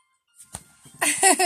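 A phone ringtone for an incoming call starts up, a loud, bright run of musical tones that follows a few soft rustles and a brief click; the call is then rejected.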